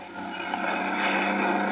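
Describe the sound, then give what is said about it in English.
A steady, droning outboard motorboat engine runs continuously on a lake, a dense buzzing roar that holds an even, fairly loud level throughout with no voices. “As soon as they were ensconced in their rooms, Buster and I hopped into his outboard and headed up the lake.”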